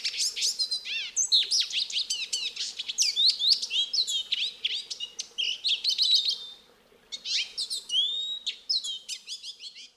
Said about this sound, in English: They are lesser goldfinches, lively little birds clothed in yellow, green, and black. Lesser goldfinches are found in a variety of habitats in the western United States, including, quite obviously, the brushy edges of the small canyon creek.